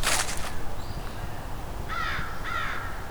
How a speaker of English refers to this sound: American crow. It's about 10 crows here and an eastern Phoebe singing. And Canada geese. Some very unhappy crows here.